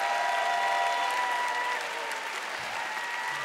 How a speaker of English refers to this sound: Church, will you give them all a big clap? All the married couples, stand. Come on, let's shout and encourage all the married couples here.